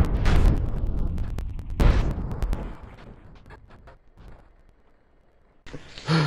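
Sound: video game explosion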